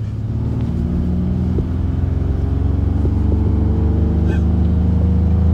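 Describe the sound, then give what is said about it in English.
A car engine revs up as it accelerates while being driven, a steady low rumble with harmonic tones climbing in pitch, loud throughout without any talking. “It comes alive a little bit, right? Comes alive. It just wants to be a sports car.”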